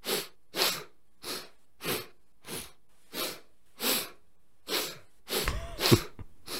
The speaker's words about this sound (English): Until I had to edit everything together, and every 2 seconds you were sniffling. Let's take a listen to some of these sniffles. Check this out.